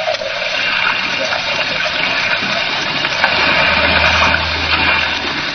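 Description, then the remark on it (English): A small fishing boat approaching an island on rough sea in hard wind: loud, continuous rushing and churning water fills the whole clip, with a low engine drone rising underneath toward the end. No voices. “as we approached the island in a small fishing boat”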